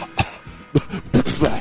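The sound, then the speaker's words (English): A person imitates the retching cough of someone about to vomit overboard on a boat: four harsh, gagging bursts in an uneven rhythm, fairly loud, with no talking in between. “I didn't know what was going on until they did the Gordo-like cough of the”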